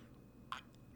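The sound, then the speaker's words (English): A single quick, quiet sip of water, a brief wet slurp in the middle of an otherwise hushed moment with no talking. “Just taking a sip of water here.”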